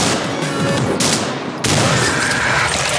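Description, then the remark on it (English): A video game enemy, a jetpack guy carrying a chainsaw, explodes when his jetpack fuel explodes, in a loud, dense roar of crackling noise, with a rough surge about halfway through that keeps rumbling to the end, no voices. “That was the sound of a jetpack guy with a chainsaw exploding after his fuel exploded and turned him into a Roman fucking candle.”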